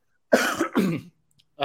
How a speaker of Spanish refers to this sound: Tocate un poco de tos, ¿eh?